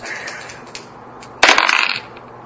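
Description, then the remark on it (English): Dice rolled for an agility test clatter onto a hard tabletop, a sharp initial hit followed by about half a second of quick rattling tumbles before settling, fairly loud against quiet room tone. “Let's go dice.”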